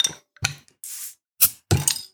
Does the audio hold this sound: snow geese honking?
no